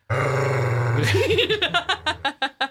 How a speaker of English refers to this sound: She's one of the most gripiest vocal dogs. She is a griper.